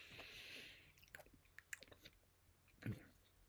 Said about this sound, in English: Let me actually finish chewing. That's probably not the greatest sound.